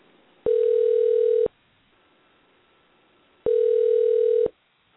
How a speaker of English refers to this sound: I'm going to dial Joan and see what she has to say about the eclipses